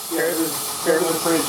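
A grinder spraying sparks all over the microphone makes a steady, loud, bright hiss throughout, with three brief tonal surges rising over the rushing noise.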